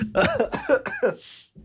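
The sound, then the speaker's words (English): A loud coughing fit: about four harsh, throaty coughs in quick succession, followed by a sharp breath in and the start of another cough. “Coughing now.”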